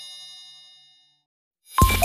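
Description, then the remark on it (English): A bright electronic iPhone ringtone chimes and rings out, fading into silence, then a loud burst of the melody starts again. No one speaks. “And there is a noise you can't ignore. The sound of the iPhone ringtone.”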